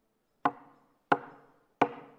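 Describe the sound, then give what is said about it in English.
Three sharp knocks on a wooden door, evenly spaced about two-thirds of a second apart, each a solid thud with a brief ringing decay before the next. “So Onesimus knocks on the door”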